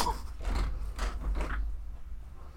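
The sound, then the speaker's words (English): A car door opens with a few quick mechanical clunks and rattles over a steady low rumble, moderately loud, with no one talking. “And then literally, the camera literally zooms on the kid, dude, like, and then opens the door and jumps in the car.”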